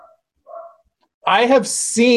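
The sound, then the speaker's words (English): Two short, muffled dog barks, quick and spaced apart, followed by a louder voice talking. “I'm glad there's a dog barking here.”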